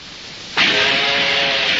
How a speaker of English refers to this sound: You're listening to an early steam locomotive. A reminder of when it took forever to cross this country.